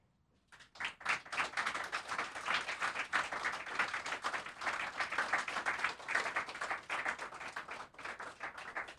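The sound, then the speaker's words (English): An audience at a poetry reading bursts into sustained applause between poems, many hands clapping in a dense, steady patter that starts abruptly and holds at a fairly loud level throughout, with no talking. “Usually people don't clap in between the poems, you know.”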